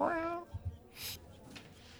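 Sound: cat meowing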